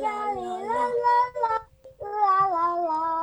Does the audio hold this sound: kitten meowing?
yes